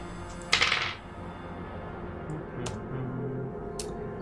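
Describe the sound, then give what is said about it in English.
Dice rolled for a movement roll in a tabletop game clatter briefly across a tabletop in a quick half-second rattle, then two faint, sharp clicks follow over a low room hum. Nobody speaks. “Oops, those are the wrong dice.”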